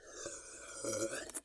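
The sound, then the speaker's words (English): Quiet sounds of drinking water: a throaty, voiced swallow that drags on for about a second, followed by a couple of short, wet sipping clicks. “Oh, taking sips? We're both taking”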